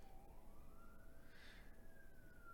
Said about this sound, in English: Yeah, now the fire trucks are rolling in. The alarm's off, and the fire trucks are pulling up probably over my left shoulder, I would guess, right here, because that's where the big garage entrance